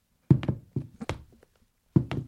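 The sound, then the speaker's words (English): Foley footsteps made by striking shoes, with hands inside them, on a tabletop: a series of dull, hollow thunks in uneven pairs, a pause, then another thump, each with a brief scuffing tail. No voices. “Footsteps, take one.”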